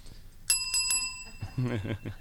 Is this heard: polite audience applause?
no